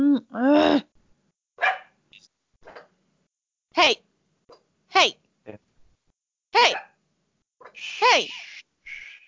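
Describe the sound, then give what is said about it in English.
Dogs bark back and forth with each other, a series of loud, sharp barks in short bursts with brief pauses between them, some doubled and some higher and yelpier. “Our dogs are...”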